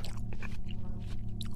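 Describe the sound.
Wet, fleshy chewing on a fallen piece of arm flesh, with several squishy bites and crunches in quick succession, fairly loud over a steady low rumbling hum.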